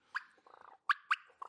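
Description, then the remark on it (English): A diaphragm turkey call imitating a gobble: a few sharp, bright yelps interrupted by a quick rattling burst, fairly loud, with no talking. “For all you turkey hunters out there.”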